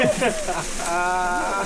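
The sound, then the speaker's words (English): A shaken nine-month-old bottle of sugared soda fizzes with a steady, bright hiss that holds for under two seconds, while a voice talks briefly over the middle of it. “Know, this thing is 9 months old. The bubbles just might not be.”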